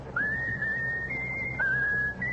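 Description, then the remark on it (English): A pet bird whistles its favorite tune on command, with clear, sustained high notes that glide and step between pitches, two phrases in a row, over a low background hum. “Whistle your favorite tune.”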